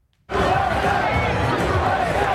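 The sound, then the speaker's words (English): A large crowd in the United States cheers and shouts outdoors in celebration after the networks called the presidential race for Joe Biden. A loud, dense roar of many voices bursts in after a brief silence and stays steady throughout. “Massive crowds across America rejoiced in the wake of the networks calling the race for Joe Biden.”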